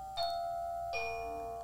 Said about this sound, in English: Oh my God, that scared me so bad. Is that your old doorbell? Who rings the doorbell?